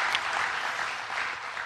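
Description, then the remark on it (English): A church audience claps together in a clap offering to the Lord, steady, dense applause, a bright crackling wash of many hands sustained at an even level throughout. “Let's give a clap offering to the Lord again for that.”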